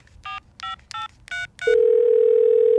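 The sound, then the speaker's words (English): Five short, bright electronic telephone beeps in an even rhythm, then a loud, steady, unbroken tone that holds to the end, like the line after a call ends, as participants leave a meeting call. No voices. “We're leaving the meeting. Beep, beep, beep, beep, beep, beep, beep, beep, beep, boop, boop, boop, boop, boop, boop, boop, boop, boop, boop.”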